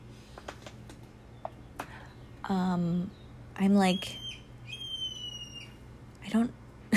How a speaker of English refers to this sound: I'm like sitting at my table, you know, like watching the birds, and there's like this random bird making this noise. I don't know what it is. It sounds like a stress call to me. What do I know? I'm not a bird.